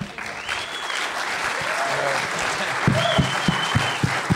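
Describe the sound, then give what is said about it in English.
An audience applauds steadily for several seconds, a dense wash of clapping with a couple of brief high whistles riding on top and a few louder claps toward the end. “Well, I'm so pleased you could be here and hear applause.”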